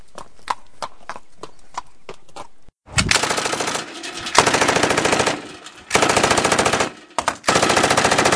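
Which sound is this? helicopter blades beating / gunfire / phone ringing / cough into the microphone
gunfire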